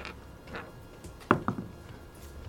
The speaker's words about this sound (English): And I also need you to do me a favor and make me roll for me. Roll a d10.